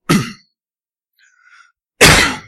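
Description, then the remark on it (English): Two loud, harsh coughs burst out about two seconds apart, each a rough, breathy blast; a faint murmur sits in the quiet gap between them. “Wow, that's a big cough.”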